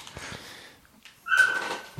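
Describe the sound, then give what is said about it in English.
A dog lets out a short, high-pitched whimper partway through, clear, following a few seconds of soft shuffling and rustling noise as the dog is being put into a van. “I'm going to put the dog in the van.”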